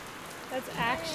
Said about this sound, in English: That's actually raining a lot. Yeah. It has been raining all day.